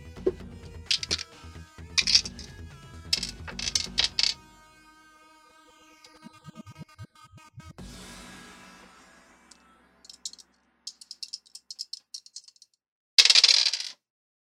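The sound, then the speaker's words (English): Two dice rattle and clatter across a hard surface in a quick burst of bright, ringing impacts, then settle with a few scattered clicks and one last sharp knock, rolled together for a D100 roll that comes up 33. No one speaks. “No, yeah, after all, D100, I gotta bust out those two dice.”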